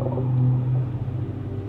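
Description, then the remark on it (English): A blue whale call: a deep, sustained moaning drone with a steady low hum that swells slightly and then eases off, heard alone without any talking. “BLUE WHALE”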